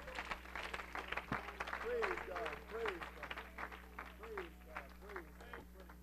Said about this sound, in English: And if you're ready to allow God to use your hands, would you clap your hands and worship Him one more time tonight?